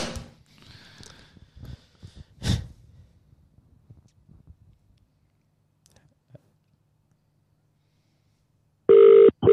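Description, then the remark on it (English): An outgoing phone call to the speaker's mum: the ringing tone sounds loud near the end, following soft rustling handling noises, a sharp knock, and a stretch of near silence. “Okay, it's calling. It's calling.”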